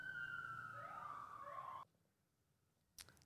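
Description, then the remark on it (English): The siren of a passing emergency vehicle wails with a steady, slightly falling tone that cuts off abruptly, followed by near silence and a short burst of noise. No one speaks. “We'll let this little siren go by.”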